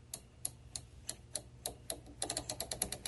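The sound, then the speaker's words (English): The big dial knob of a washing machine clicks as it is turned with the machine switched off: evenly spaced sharp ticks, slow at first and then quickening into a faster run of clicks near the end, with a low hum underneath. “Now, the knobs do click.”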